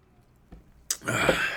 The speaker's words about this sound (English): Starting it off right with a delicious, crispy, cold Coors Light. Hear that on ice?